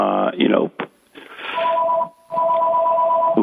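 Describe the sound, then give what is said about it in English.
A steady two-tone electronic beep sounds on a phone line, twice, the second tone held longer, over a hissy, muffled line after a moment of talking. “Oh, I'm getting a beep on my line too, and your phone went off at the same time.”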